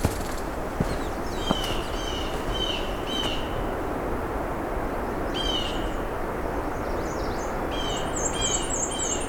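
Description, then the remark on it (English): High, thin songs of a black-and-white warbler and an American redstart: several bursts of rapid, repeated notes, heard over a steady rushing background noise, with no voices. “American Red Start, I think, as well. There's the black and white again.”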